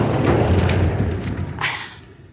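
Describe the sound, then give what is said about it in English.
Deep, rumbling booms of bombing explosions in Gaza roll through, with heavy low-end thuds and a rattling crackle as a home shakes, fading slightly toward the end. “And as you can hear, the home now is shaking and the explosions, the bombings are everywhere.”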